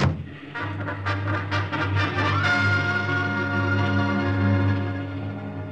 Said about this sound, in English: That motorcycle ride through enemy-held territory with that car full of Nazis firing at me was wilder than the stories in the comic books I used to draw for.